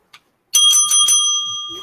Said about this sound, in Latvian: Nu parādi to savu zvanu! Viņš ir tās ļoti jocīgs, re, kas viņam uzrakstīts ir. Prosecco. Kaut kas viņam tāds ir. Viņš izskatās zelta krāsā. Viņš ir tā kā kroma, ne, nu, tā kā kope, vai viņš ir vienkārši tev kādā krāsā?